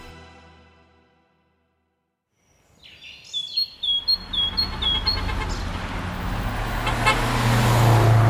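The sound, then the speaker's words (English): After a brief silence, city street traffic on Vine Street in Lancaster City swells in, a steady rumble of cars passing that grows louder, with birds chirping faintly above the noise. “People are going about their lives, traffic is driving by.”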